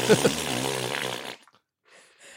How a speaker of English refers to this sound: please insert fart noise dot wave.